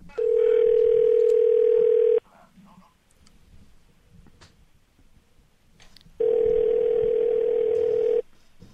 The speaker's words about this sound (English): You sit down, press record. I make the phone call. And here it is.